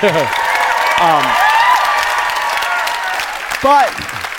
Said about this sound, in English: Applaud for Obamacare.